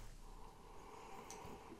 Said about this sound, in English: Listen to him sniff that beer.